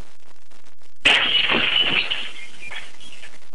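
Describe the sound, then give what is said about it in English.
A hotel guest strikes a hotel window: a single sharp blow against the glass, followed by a bright, brittle crackling ring that lasts about a second and fades as the glass cracks without fully shattering, fairly loud, with no talking. “The glass cracks, but doesn't completely shatter.”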